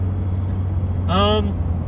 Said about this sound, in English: I'm not sure if you guys can hear it, but we are back in the truck. We are recording remotely today. Gonna drive up to the spot here and give our special guest a call.